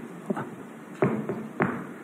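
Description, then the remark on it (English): A few dull, solid knocks on a door by the local baker, uneven in spacing, with a couple of softer taps first and then three louder raps over a quiet background hiss. “And right after doing that, there's a knock on the door.”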